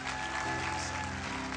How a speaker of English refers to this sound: Give our pastor a big clap as he comes, the pastor of the church.